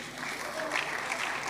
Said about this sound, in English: Thank you, chosen vessel. God bless you. You know, you have always been a blessing to me and to all of us here. Let's clap for them.